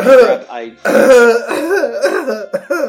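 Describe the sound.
A voice acts out the choking cough of an urchin cradling his neck, with strained, rasping throat-clearing bursts and sputtering gasps over about three seconds, fairly loud.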